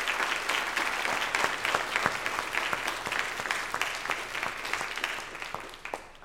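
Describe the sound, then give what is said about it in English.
An audience applauds to give God thanks for the church staff, many hands clapping in a dense, continuous patter that stays fairly even for several seconds, with no voices breaking through. “I can see you want to give God thanks through your applause, so go ahead and do that, would you, for them.”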